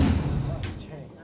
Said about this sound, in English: Floor 129. Doors opening.